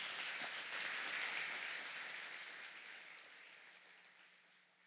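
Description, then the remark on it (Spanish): A church audience applauds for Jesus, a dense steady patter of many hands clapping that gradually thins and fades over about five seconds, with no voices over it. “Dar un aplauso a Jesús.”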